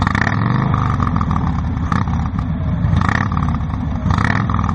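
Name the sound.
motorcycle engine revving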